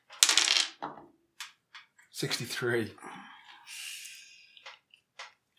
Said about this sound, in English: Five dice, I'm not going to get... Would you like to roll a d66? Green first.